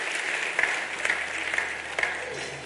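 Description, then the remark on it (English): After a prayer, an audience gives the Lord a hand clap, clapping steadily in a dense wash of many hands with a few louder sharp claps rising out of it at regular intervals, no voices audible. “Get the Lord a hand clap.”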